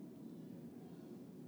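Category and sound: vehicle, airplane flying overhead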